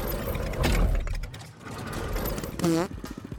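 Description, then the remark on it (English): A newly souped-up engine starts up and runs with a steady, rumbling mechanical clatter, fairly loud, with a brief tonal whine cutting in near the end. “Firing up. New and improved engine.”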